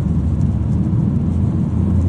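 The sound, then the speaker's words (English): A steady low rumble of a car driving in slow highway traffic along the Gardner, heard from inside, with constant engine and tire drone and no voices. “Yes, traffic is slow. I'm still driving along the Gardner.”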